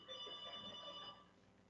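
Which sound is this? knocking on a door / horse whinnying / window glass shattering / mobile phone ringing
mobile phone ringing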